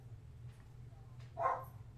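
A single short dog bark rings out against a steady low hum, brief and moderately loud, with no talking.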